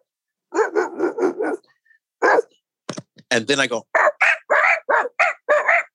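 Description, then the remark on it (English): A man says a few words, then barks like a dog himself: a string of sharp, loud yaps and woofs with strained vocal texture, repeated in quick bursts. “I can get a barking chain going for about 20 minutes.”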